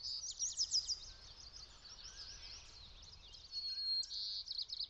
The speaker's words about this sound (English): outside and it's just big, again, huge, wide stereo, like nothing that you could ever hear from anything you'd ever buy. And it's just wonderful. I just love those things. Like, the birds especially, I think it's just one of the greatest sounds ever.